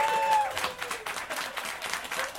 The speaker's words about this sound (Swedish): Du bara, de kommer att applådera. Det kommer lätt komma en applåd.